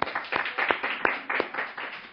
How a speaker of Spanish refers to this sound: Vamos a dar palmas al Señor por ellos.